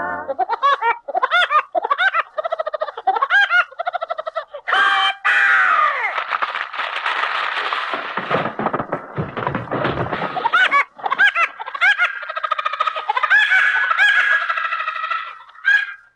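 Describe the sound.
A cartoon woodpecker call, a voice imitating the bird with loud, repeated staccato laughing trills in quick bursts, over a busy novelty-song backing that swells in the middle.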